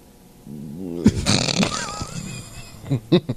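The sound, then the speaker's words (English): A voice imitates the speaker's father's growling stomach: a low, wavering groan rises into a rough, gurgling rumble, then ends with a few short, punchy pops. “is that his stomach?”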